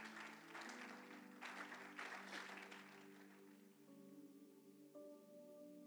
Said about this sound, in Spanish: Denle un fuerte aplauso a Cristo.